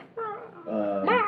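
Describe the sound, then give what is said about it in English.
A person voices a character's roar during an attack in a tabletop role-playing game: a short, strained, drawn-out growling cry that swells louder and rises in pitch at the end, with no other talk. “Also roar. She's gonna roar.”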